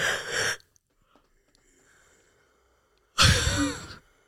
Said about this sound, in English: I can't catch my yawn. Can you catch yours? What do you mean? Like, it keeps getting away from me like a sneeze.